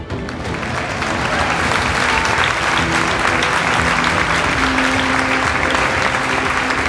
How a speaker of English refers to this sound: Yeah, this is where we put the fake applause at